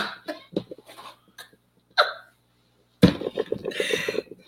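Repeated heavy, rasping coughs: a quick cluster of short hacks, a brief pause, a single cough, then a longer, rougher coughing fit with no talking.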